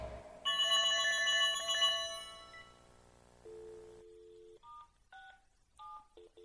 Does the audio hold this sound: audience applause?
no